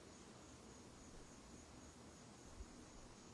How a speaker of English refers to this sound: Just crickets chirping.